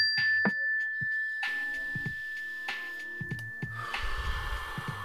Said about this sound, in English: So right now, when you hear the mindfulness bell, everybody just sit still for a second or stand still and take a deep, slow breath. Ready?